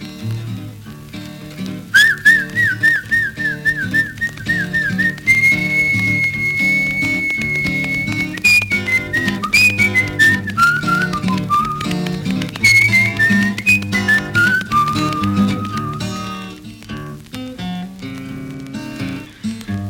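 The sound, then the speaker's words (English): A person whistles a call to an animal: a quick warbling trill, then a long held note sliding into several falling notes, clear over a low rumbling, crackly background. “He said, I whistle to her.”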